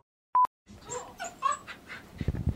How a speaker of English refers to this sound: Shut that fucking dog up.